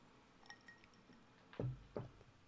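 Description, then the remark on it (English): A faint glass clink, then two distinct gulps as someone drinks water from a glass. No talking, just quiet room noise around the swallows. “Let me take a water break again.”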